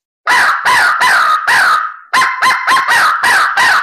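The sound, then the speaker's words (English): Loud imitation crow caws made on a crow call with a raspy, growling edge: four harsh bursts, a brief pause, then about six shorter, sharper calls in quicker succession, with no talking. “And then you start put that growl in it.”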